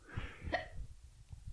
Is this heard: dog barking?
no